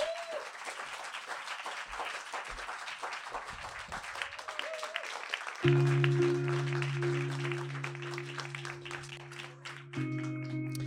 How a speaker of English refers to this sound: So I'm so glad that he's come to perform for us this evening. So round of applause, please, for Ben Norris.